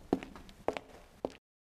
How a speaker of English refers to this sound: The housekeeper leaves, and footsteps state that.